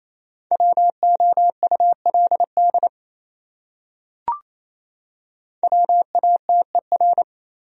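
Rapid Morse code at 28 words per minute, sending words from a list of the top 100 words: a steady mid-pitched tone keyed into quick dots and dashes, in two bursts separated by a pause with a single short click.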